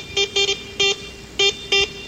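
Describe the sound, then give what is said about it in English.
A Morse code all-clear signal sent out after a Christmas Eve radio broadcast: six buzzy, steady-pitched beeps of slightly varying length, some clustered in quick pairs, others spaced apart, sounding clearly over a faint low background with no talking. “Captain Zeno, to be on the safe side, you'd better send out an all-clear in Morse code.”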